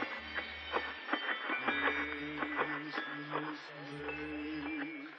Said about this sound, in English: Like, we have this one called Santa's Marching Band that's, you know, it's in Kmart and everything else. It's eight little motorized figures that hit actual metal bells with hammers. Here, I can make it go for you.